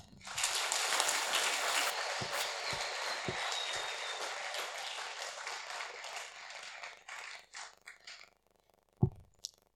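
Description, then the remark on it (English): An audience claps together in a dense, steady patter of many hands for several seconds, then the applause thins to a few scattered claps and fades out. “You clap.”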